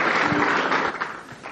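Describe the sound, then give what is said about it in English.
A church audience claps steadily for the children and the pastor, many hands producing a dense, continuous patter of applause at a fairly strong level, with no voices standing out. “Give our children, Pastor, a big hand clap.”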